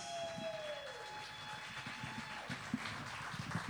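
An audience at a poetry event claps steadily for a few seconds, a dense, even patter of many hands with no voices, while a thin tone glides downward at the start.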